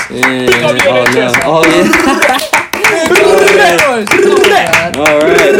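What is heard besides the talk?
neighbours clapping outside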